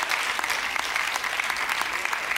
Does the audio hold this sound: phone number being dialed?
no